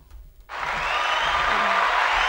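A burst of crowd applause bursts in after a brief quiet moment, a dense, steady wash of many hands clapping that holds at a strong, even level to the end.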